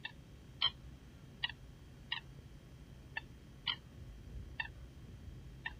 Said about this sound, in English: A very odd sounding that bird. That is that. It's an odd sounding bird. That's a coot. That's coot, yes.